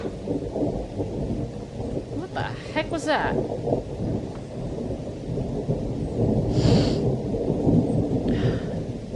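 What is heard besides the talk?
thunder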